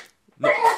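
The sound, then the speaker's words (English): A single sharp sneeze bursts out after a brief silence, loud and abrupt with a voiced, breathy tail. “Oh, yeah. Bless you.”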